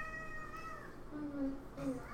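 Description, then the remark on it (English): A male cat named Larry screams with a long, high, drawn-out yowl, followed by two shorter, lower-pitched cries, all harsh and strained against a steady background hiss. “Listen to how he screams.”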